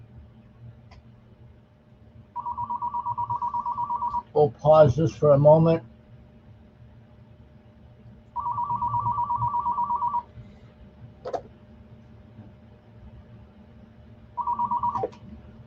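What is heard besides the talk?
telephone ringing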